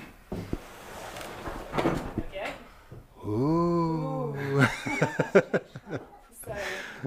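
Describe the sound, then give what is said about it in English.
A door in an Elizabethan tower creaks open, its hinge letting out a long, wavering squeal that rises and falls for about a second and a half, with brief voices and rustling just before and after. “So just, you know, manage your expectations as I open this door.”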